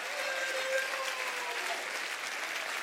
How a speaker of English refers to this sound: Just keep clapping your hands. Come on. Keep clapping your hands.